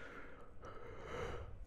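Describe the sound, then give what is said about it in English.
A single drawn-out yawn, a soft, breathy exhale with no talking around it. “Yeah, I say it then immediately yawn.”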